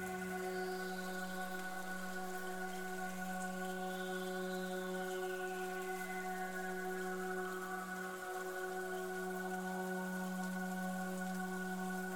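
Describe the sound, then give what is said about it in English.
Steady rain patters softly and continuously beneath a sustained, humming drone, a quiet, even wash of drops with no talking. “And I invite you to listen to the sound of the rain.”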